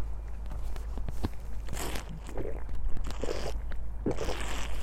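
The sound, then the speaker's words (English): Someone drinks water: a few soft gulps and swallows mixed with small clicks and crackles, like a bottle or cup being handled, with no talking. “I'm just gonna have a drink of water.”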